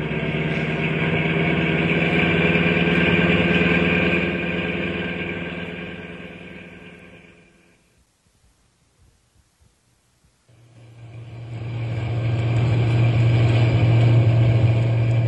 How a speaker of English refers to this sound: I'll give it a little more gas.